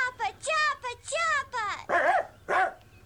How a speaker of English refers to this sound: Oh, there's a dog.